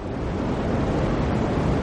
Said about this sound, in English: It's the sonified afterglow of the Big Bang, known as the cosmic microwave background, and its discovery caused a scientific revolution.